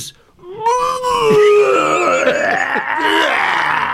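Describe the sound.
A voice imitates vomiting onto a snare drum in an orchestra pit: after a brief spoken word, a loud, strained retching groan stretches for about three seconds, its pitch wavering and sliding downward as it gurgles on.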